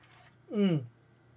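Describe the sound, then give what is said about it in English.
A short, airy slurp of someone sipping a Twisted Tea, followed by a brief voiced, falling "ahh" of satisfaction. Low hum underneath, no talking. “I need to take a sip of my twisted tea.”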